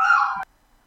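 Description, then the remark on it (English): A dog whines once, a short, high, steady nasal tone lasting under half a second that cuts off abruptly into near silence. Fairly loud, with no talking over it. “The dogs are whining.”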